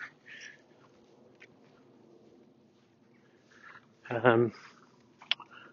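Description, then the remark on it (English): One of a group of five geese gives one loud honk near the end, with a few fainter honks and clicks scattered around it over a low, steady background murmur. “Well, we've been free of molestation, apart from those geese that are still really looking at me.”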